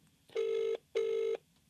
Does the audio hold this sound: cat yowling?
no